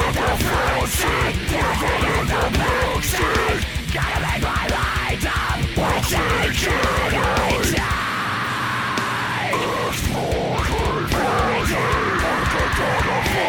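Loud, dense death metal version of a pop song with harsh screamed vocals over distorted guitars and rapid pounding drums; the drums drop out partway through, leaving sustained guitar and screams.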